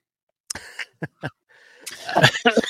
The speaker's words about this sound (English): Excuse me, I got a cough.